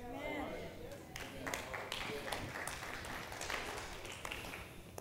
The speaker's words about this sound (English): Yeah. It's a good golf clap.